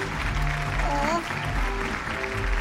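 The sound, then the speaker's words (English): A crowd applauds a guest being called to come on down, in a steady, dense wash of clapping that holds for a few seconds, with a faint tonal sound, like a voice or music, rising briefly partway through. “let's have a big round of applause for the hungriest being in the house, folks.”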